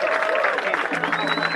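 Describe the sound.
Steady applause from an audience for two speakers for their strength to speak out, a dense wash of clapping that holds level throughout, with cheering voices and a brief whistle mixed into the noise.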